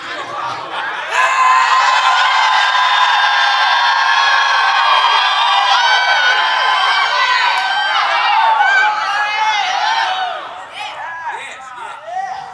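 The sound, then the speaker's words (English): A crowd of many voices screams and whoops together, loud and sustained for several seconds before trailing off into scattered cries. “You know what I want to do right now? Scream.”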